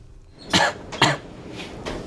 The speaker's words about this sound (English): Many COVID patients share this problem, continuing to cough or having a dry and itchy throat long after their infection has otherwise cleared up.